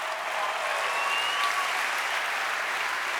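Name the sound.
audience clapping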